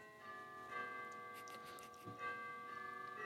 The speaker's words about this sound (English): Why is my doorbell going off all the time? 8 o'clock at night. Why is your post arrive at this time?